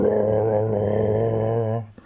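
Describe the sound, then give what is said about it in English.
A single deep, throaty Parasaurolophus call holds steady for nearly two seconds, loud and rich with a slight wobble in its pitch, then cuts off abruptly. “Bob sat in awe, or at least in something that he didn't want to think about, and listened to the sound of the Parasaurolophus call and response to the Metabrosaurus.”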